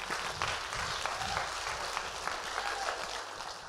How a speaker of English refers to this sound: Clap your hands. Come on, somebody.